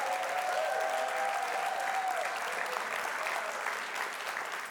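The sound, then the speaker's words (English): An in-house crowd applauds to show love for those watching online, a dense, even wash of clapping that holds at full strength for several seconds with a faint tonal whistle or cheer drifting through early on. “And while we got the applause going, here's what I want to do.”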